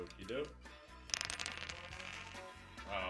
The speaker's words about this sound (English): if you'll roll the dice, so we'll determine your handicap. We set your handicap at 15, but we allow you to roll the dice, whatever that number is. We will take off 15. That will be your handicap for today. Please roll.